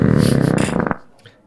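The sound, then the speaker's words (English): A single loud belch lasting about a second, made as a beer rating, with a rough rumbling, pulsing tone that cuts off abruptly into near silence. “We will be discussing and rating these beers with our suds ratings and our signature belching sounds.”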